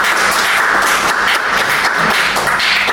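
An audience applauds a reader who has just finished reading, with steady, dense clapping that stays loud and even throughout, a continuous wash of many hands with no voices standing out.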